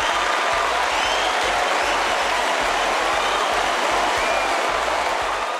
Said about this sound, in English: Can I get the applause button? Absolutely. For that one?